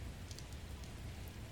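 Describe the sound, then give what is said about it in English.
Steady, hissing rain from a massive storm pours down with a deep low rumble beneath it and a few sharper drop-like ticks, fairly soft and continuous with no voices. “There's a massive storm.”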